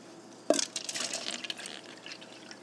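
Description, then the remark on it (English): Alkaline water pours into a cup, starting with a sharp splash and continuing as a bubbly, gurgling stream for a couple of seconds, fairly quiet overall. “Here's me pouring some water in my cup.”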